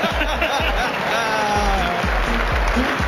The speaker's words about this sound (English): Oh, that was fun. Oh, and he's applauding himself. Well done.